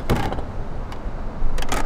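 A wastewater autosampler in a little plastic cabinet at the wastewater treatment plant in Fort Collins, Colorado, takes a sample, running with a steady low mechanical hum, broken by a few short, hissing whirs from its pump at the start, middle and end. No one speaks.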